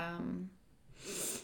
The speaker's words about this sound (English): I keep sniffling. I'm sorry. Sorry. The fright. My nose has been running a lot today for some reason.